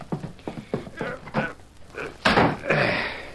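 A series of quick wooden thumps, then a trap door in the floor heaves open with a loud creak and heavy rasping groan that lingers to the end.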